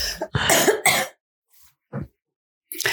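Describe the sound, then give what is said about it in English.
A loud fit of harsh coughing: three quick bursts in a row, a short pause with a couple of fainter coughs, then another loud cough starting at the end. No talking. “I'm going to need the cough button. I don't have a cough button.”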